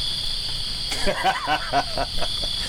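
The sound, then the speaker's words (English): A crickets sound effect: crickets chirp steadily in a high, continuous trill throughout, with a few faint murmuring voices or rustles briefly rising underneath in the middle. “Nah, B, that didn't deserve crickets.”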